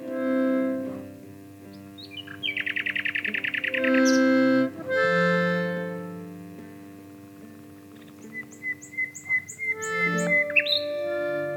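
A nightingale sings alone in varied phrases: rapid buzzing trills, sustained whistled notes and a burst of short repeated pips, loud against a steady low hum.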